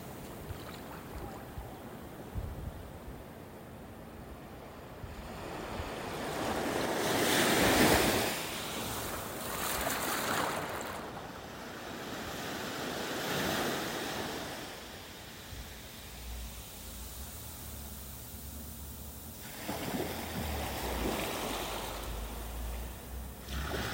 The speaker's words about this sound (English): As you listen to the ocean waves and feel your breath slow down and deepen, you feel yourself relaxing and letting go.